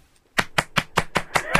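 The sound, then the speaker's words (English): A hand slaps a person's own belly seven times in a quick, steady rhythm, each slap a loud, fleshy smack with a broad, dull thud, following a moment of near silence. “Listen to me slap my belly. Hang on, this is me slapping my belly.”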